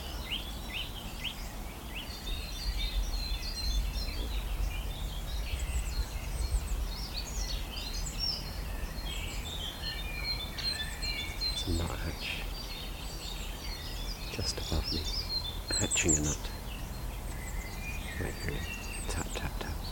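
A busy woodland bird chorus of chiffchaff, blackcap, robins and dunnocks flying around, overlapping chirps and high calls, with clearer repeated calls of a nuthatch standing out, over a low outdoor rumble.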